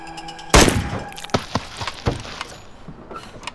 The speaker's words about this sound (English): I can see its outline through the car's tinted windows, watching. It headbutts the glass.